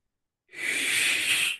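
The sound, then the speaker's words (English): A person imitates the deep hiss of a Gaboon viper: one steady, breathy hiss that holds evenly for just over a second, then stops abruptly. No one speaks. “you'll give out a loud, deep hiss, please.”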